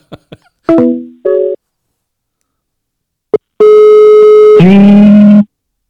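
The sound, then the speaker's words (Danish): A few faint clicks, then two short phone keypad beeps from a phone's buttons accidentally pressed in a pocket, followed after a pause by a longer, loud electronic phone tone that shifts pitch partway through. No one speaks. “Nej, det kan være min telefon, synes jeg trykker på knappen ned i lommen, hedder det, ikke?”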